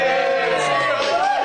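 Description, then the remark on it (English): Children of the Billericay School give a final cheer to round off the broadcast, cheering loudly and continuously. Many high voices blend into a sustained, bright roar of shouts and whoops with no break. “And they are so keen, we are actually going to round this whole thing off with another fantastic cheer from this school.”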